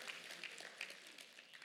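An audience applauds in a steady, dense wash of many overlapping hand claps, fairly soft in level and continuing evenly without a break. No one speaks over it.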